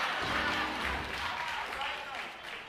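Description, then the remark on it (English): An audience claps steadily for a few seconds, a dense, even patter of many hands mixed with crowd murmur and voices, fading slightly toward the end. “Y'all supposed to clap in that section.”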